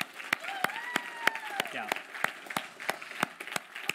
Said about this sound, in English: Well, I think that is worth a big round of applause.